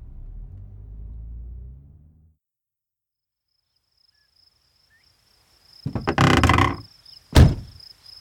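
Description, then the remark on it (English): A car pulls up at a home outside of town under dark storm clouds; its engine rumbles low and then cuts out, leaving a quiet night with a faint cricket chirring, followed by a rough scrape and a sharp thunk like a car door shutting. “He pulled up once again to Professor Hawthorne's home outside of town”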